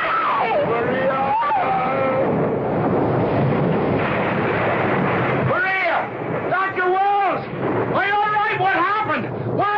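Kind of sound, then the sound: nature, thunder clap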